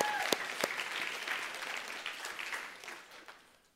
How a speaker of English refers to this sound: Our nursery workers may not be clapping as hard, but man, we're so thankful.